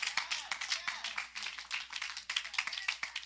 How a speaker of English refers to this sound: I ain't get enough hand claps.